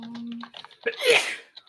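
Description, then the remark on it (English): A single loud sneeze bursts out with a sharp breathy blast, preceded by a short hum and a few soft murmured sounds. “Bless you.”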